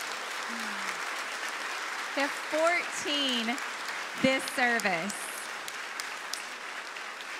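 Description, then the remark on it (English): Steady applause from an audience at a church's Baptism Sunday service, for 28 baptism candidates invited on stage, fills the whole stretch, a dense, even clatter of many hands, while a man speaks over it for a few seconds in the middle. “Go ahead and applaud.”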